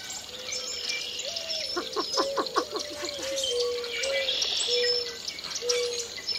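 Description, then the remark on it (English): A busy marsh dawn chorus in early spring at Lacassine Pool, a national wildlife refuge: red-winged blackbirds, northern cardinals and boat-tailed grackles call from thickets, with clear whistled notes repeating low and steady, rapid chattering, and higher trills and chirps over a constant insect-like hiss; no voices. “Red-winged blackbirds are calling from the thickets around the pool, along with melodious northern cardinals and gravel-voiced boat-tailed grackles.”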